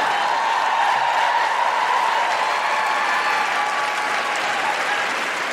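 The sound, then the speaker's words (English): A live audience breaks into sustained, loud applause with some cheering mixed in, a dense wash of clapping that holds steady for several seconds and only slightly eases toward the end. “And just to be clear, we are very much cheering you walking out the door, not a man holding his own baby.”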